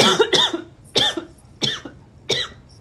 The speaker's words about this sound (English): Choking on water. Are you okay? Yeah, I choked on water. It went down the wrong tube.